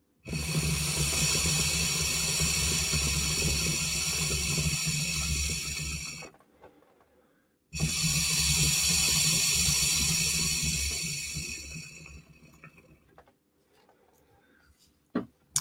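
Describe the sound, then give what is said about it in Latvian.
Two long bursts of gurgling, hissing water bubbling through an electronic water pipe, each lasting several seconds with a short pause between, fairly loud, then fading to quiet with a few faint clicks. “Teikšu tā, vajadzīgi baigā plaušu, lai viņi, nu, palīdz uz leju, redzē, kā te ūdens viss burbuļo.”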